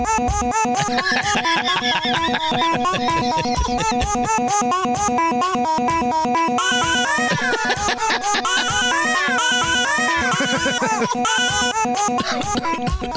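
Fast, driving rock riff built from a newborn baby's coos, squeals and giggles, recorded by the father over an entire year, chopped up and pitched into a repeating melody over a steady beat, loud and continuous with no talking.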